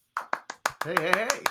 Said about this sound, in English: Oh, the clapping has started. The clapping has started. Oh, here we go again. That's right. Just right on into it. You know, we don't even have to do the bit. We just go right into applause.